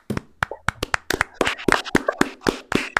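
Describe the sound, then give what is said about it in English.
A short burst of hand clapping: a quick, slightly uneven series of sharp, crisp claps, over a dozen in about three seconds, with no talking. “Clap it up.”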